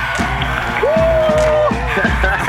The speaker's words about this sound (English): But let's give a huge round of applause to my brother from another mother